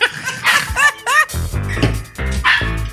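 A dog barks in several short, yelping bursts in quick succession, loud and high-pitched, followed by deeper, rougher vocal sounds.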